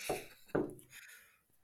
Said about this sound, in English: You were knocking at the dog. Yeah, he's trying to escape underneath the fence.